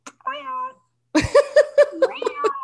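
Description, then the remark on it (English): A cat gives one drawn-out meow, then after a short pause lets out a quick string of clipped, chirping meows, fairly loud. “Hey, kitty cat.”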